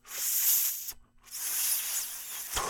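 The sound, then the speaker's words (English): An airy hiss of someone drawing hard on a cannabis joint, broken by a brief pause, then a second long inhale ending in a soft low puff. No one speaks. “I think that deserves another toke.”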